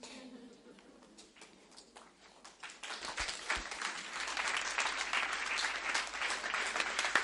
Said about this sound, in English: There's no peace in your clapping.